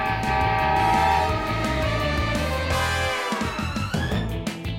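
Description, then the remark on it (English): A loud train, Mighty Mila, rumbles along with a steady rhythmic chugging beneath a sustained blaring horn-like tone, the sound shifting and sweeping near the end, as the speaker tries to stop it. No one speaks. “I'm gonna fix that fence just as soon as I stop this train that's also Mighty Mila!”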